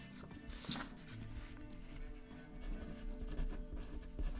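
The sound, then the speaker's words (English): A pen scratches steadily across paper as someone copies something down, with short bursty strokes and a brief brighter scrape near the start, continuing without a break under a low background hum. “Okay, this is going to take a minute to copy down all that.”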